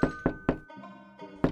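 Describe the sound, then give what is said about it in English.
A neighbor knocks on a door in Congerville first thing in the morning: three loud, heavy knocks in quick succession, a brief sustained ringing tone, then one more forceful knock, without any talking. “I do believe that's my favorite resident of Congerville, beating down our door first thing in the morning.”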